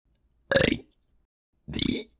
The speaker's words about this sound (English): He took a swig of the flammable liquid and started burping his ABCs. In flame.